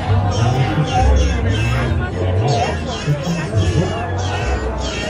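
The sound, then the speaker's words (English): A few short electronic cat meows from a novelty ugly Christmas sweater printed with kittens wearing Santa hats, sounding when its button is pushed, faint and partly buried under the steady hubbub of a crowd of chattering voices at a party. “And what I didn't know when I bought the sweater, what I didn't know until I hugged my sister in Minnesota last week, was that my sweater meows.”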